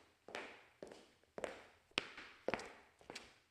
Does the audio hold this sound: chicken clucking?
no